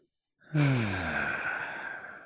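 After a brief silence, a long, slow breath out begins with a soft voiced sigh, then continues as a steady, breathy exhale for nearly two seconds. It is a person demonstrating a long out-breath in a breathing practice.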